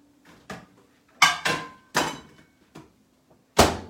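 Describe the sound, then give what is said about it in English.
A microwave door being closed, with classic mini corn dogs inside to heat for one minute, amid a run of sharp plastic clunks and knocks, about six in an uneven rhythm, ending in one loud thud over a faint steady low hum. “We're going to put it in the microwave for 1 minute.”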